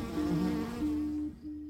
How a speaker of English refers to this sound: I'm a honeybee researcher, and I built this rig with the rest of the group to shake a swarm of honeybees. The honeybees were attached to a board, which we moved back and forth with a motor, and we filmed their response.